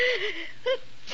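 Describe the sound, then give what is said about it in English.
A woman sneezes: a breathy, rising intake of air followed by a short, sharp voiced burst, with a hint of another breath at the very end. “Gesundheit.”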